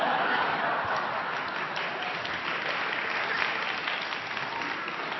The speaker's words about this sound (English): Thank you, guys. Give me a big round of applause.